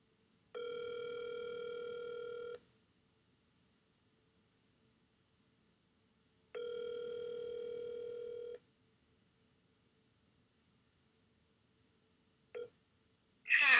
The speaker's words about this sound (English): Hello, we are not available now. Please leave your name and phone number after the beep.